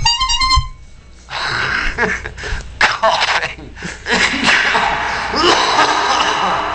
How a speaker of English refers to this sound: Coughing. And that's what it's gonna be like when they come to take your firstborn. They're just gonna cough into loudspeakers.